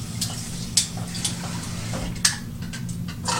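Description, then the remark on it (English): Water is poured over ice cubes to cover them, running steadily with a low, constant rush while a few sharp, bright clicks and cracks of ice pop out at irregular moments, with no one talking. “I'm just gonna cover them with water so you can see the ice.”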